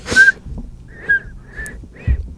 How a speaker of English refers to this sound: Oh, did you like, not know how to whistle?